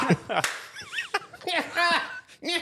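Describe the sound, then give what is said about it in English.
A sharp single hand clap rings out as a person sits back laughing, amid bursts of voiced, playful laughter and vocal sounds, fairly loud, with another quick smack-like hit shortly after. “I'll laugh. I'll be like... And I'll sit back and clap one time.”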